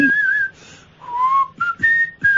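Someone whistles a short, wavering melody, clear pure tones sliding between pitches in several phrases, with brief pauses and faint breathy sounds between notes, no talking.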